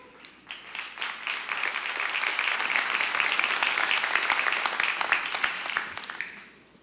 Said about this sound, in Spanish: Aplauso de golf.